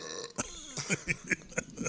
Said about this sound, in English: I think you're burping more than you're telling stories, bro.